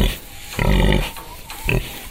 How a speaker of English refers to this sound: And how even the guttural grunting of a pig can reveal a whole other world.